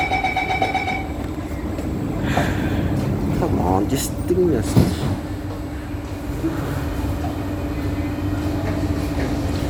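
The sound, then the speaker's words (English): A bus door warning chime sounds briefly on a bus in Singapore, then the doors close with a clunk while a steady low engine rumble carries on as the bus drives. People talk over it. “Doors are closing.”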